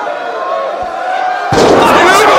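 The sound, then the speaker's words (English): In a women's wrestling match, a wrestler's five-star frog splash from the top rope hits the mat with a sudden heavy slam, cutting through a steady crowd hum and setting off a loud, sustained roar from the audience. “Five-star frog splash.”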